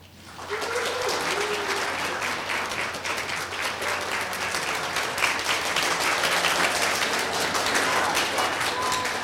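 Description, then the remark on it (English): An audience at the Computer History Museum applauds steadily, a dense wash of many hands clapping that swells in and holds at a fairly loud, even level, with a few faint voices mixed in. “Well, you think it's moderately likely, although I noticed there were five computers in the audience, being as this is the Computer History Museum, who were applauding as well.”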